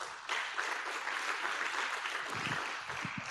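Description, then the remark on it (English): A church audience breaks into sustained applause during a sermon, a dense steady wash of many hands clapping at even loudness for the whole stretch, with no voices rising above it. “If you believe that, come on, give him a good round of applause.”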